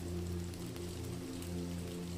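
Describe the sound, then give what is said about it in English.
Steady rain patters against a window pane, a soft, continuous hiss of drops over a low, sustained hum, with no voices. “The rumbling thunder becomes a lullaby, harmonizing with the pitter-patter of raindrops against the window pane.”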